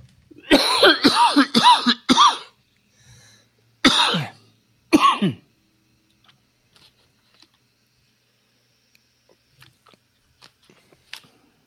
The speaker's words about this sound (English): I'm about to have a coughing spell, brother. I've been fighting a cold here, so you might have to.